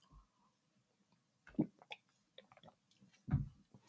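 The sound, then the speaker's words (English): Quiet mouth sounds of someone drinking water: a couple of soft wet gulps or swallows about two seconds apart, with faint smacking and clicking between them and no talking. “1 second, just going to take a quick drink of water.”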